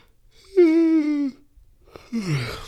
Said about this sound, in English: Yo, I'm so sorry. I'm going to try and edit out those yawns.